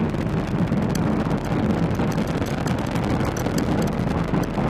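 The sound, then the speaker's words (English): A Falcon 9 rocket's nine Merlin first-stage engines, providing 1.7 million pounds of thrust, roar as it pitches downrange during ascent, carrying a Dragon capsule with four crew to the International Space Station: a loud, continuous low rumble with harsh crackling bursts throughout, steady and unbroken, with no voices. “Nine Merlin engines on the first stage providing 1.7 million pounds of thrust.”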